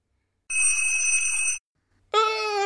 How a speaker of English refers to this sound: What was that? I'm scared. Turtle, that was the timer. It means the cake is ready, silly.